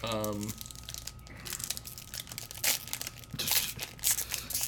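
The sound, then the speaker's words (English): A crinkly foil pack of old Star Trek: Deep Space Nine trading cards being torn open: irregular bursts of bright, crackling rustle that grow louder toward the end, after a brief voiced tone at the start. “And then I have to open another pack.”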